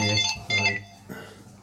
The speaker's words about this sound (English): Got another podcast phone call.